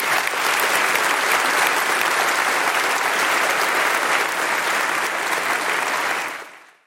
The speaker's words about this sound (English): Amazing. Amazing. Oh, a round of applause.